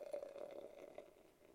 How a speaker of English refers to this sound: This is being poured into a wonderful goblet that I'm pretty sure can hold a 2 liter. Right. Yes, it's like a it's like a cognac snifter. It was the only thing in the cupboards here.